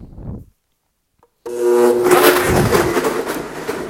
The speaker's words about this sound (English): I'm going to start this blender, so it's going to be loud, so I'm going to move away from it.